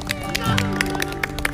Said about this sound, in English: Hasn't she done well? Can we just give her a clap?